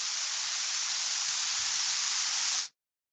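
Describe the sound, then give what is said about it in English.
A steady, fairly loud burst of static hiss holds constant for nearly three seconds, then cuts off abruptly into silence. “Static's coming.”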